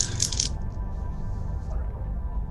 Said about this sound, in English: I rolled a nat 10 on my dice.